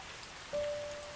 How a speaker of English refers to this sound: All of a sudden, the temperature of the rain cooled. The droplets softened. The rain is coming down at the same pace, but somehow, the droplets on my skin have softened.